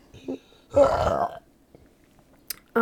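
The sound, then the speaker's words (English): A single loud burp rumbles out for about half a second, deep and throaty, with brief snippets of a voice just before and after it. “Oh my god, I gotta burp again.”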